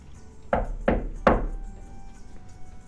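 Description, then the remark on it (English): Three firm knocks on Detective Vincent's wooden door at the Tiger's Eye in quick succession, each with a short resonant thud, followed by quiet room tone with no voices. “This time, the Vincent responds instantly, opening the door before your second rap.”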